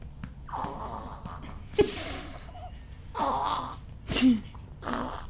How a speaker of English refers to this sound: Sorry, she's being so loud right now. It's okay. We're about to hear her little baby burp.